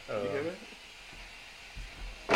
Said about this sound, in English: It's only in the headset. No, it's picking up. It's like the radiator. Sorry, everyone. Oh, it is the radiator. So loud.